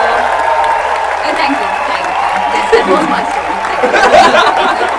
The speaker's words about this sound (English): He just looks to the audience like, a cheer for the heroes. Woo! Thank you.